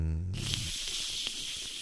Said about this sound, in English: Is that bacon sizzling?